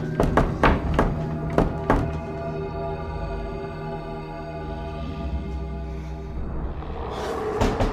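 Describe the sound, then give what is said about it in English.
Five or six loud, heavy knocks pound on a door in quick succession, then give way to a sustained, ominous droning tone with no further knocking. “It started as a normal knocking. Then it got louder.”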